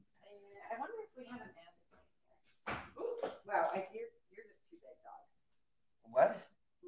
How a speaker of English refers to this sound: Stepping on dogs left and right.